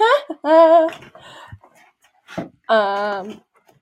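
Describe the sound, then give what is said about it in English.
A dog gives two drawn-out, high whining cries, separated by a short pause with soft panting and snuffling in between. “Once I get rid of that dog.”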